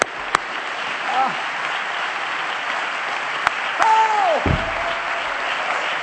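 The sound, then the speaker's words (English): An audience claps hands together in a dense, steady wash of applause lasting several seconds, with a few sharper individual claps and a brief gliding tone sounding over it. “Would you clap your hands with me one more time?”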